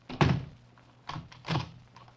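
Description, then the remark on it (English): A door bangs shut, followed a moment later by two duller clunks, like a bolt or lock being worked. No voices. “When you've had your little argument, the one who's left can knock on this door, and I'll come and unlock it.”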